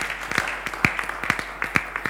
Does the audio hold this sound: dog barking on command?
no